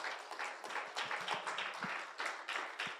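An audience applauds the Lord in the morning for a few seconds, a dense patter of many hands clapping at once, fairly even throughout with a few sharper claps standing out. No one speaks.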